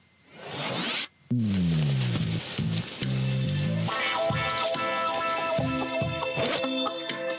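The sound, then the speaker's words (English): A quick, rising rasp of a zipper being pulled down, lasting about a second, followed by a loud tonal jingle with descending, stepped notes and no talking. “All right, we've pulled the zipper down.”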